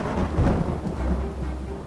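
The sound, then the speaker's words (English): Heavy rain from an atmospheric river pours down at night in southwestern BC in November, a steady, dense hiss with a deep rumble of thunder rolling underneath. No one speaks. “Heavy rain is falling again tonight.”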